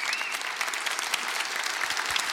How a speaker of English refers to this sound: Raise your hands. Raise them high. Be proud. It's awesome. Let's actually clap it up for this room. That's awesome.